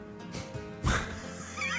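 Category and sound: animal, horse neighing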